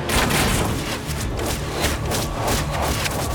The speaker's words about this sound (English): A volley of arrows flew in a high arc through the air, whistling into the earth between Arthur and Merlin.